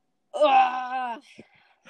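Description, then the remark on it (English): A single drawn-out vocal yawn with a steady, moaning tone lasting about a second, then trailing off into a few faint breathy sounds. “I could not stop yawning.”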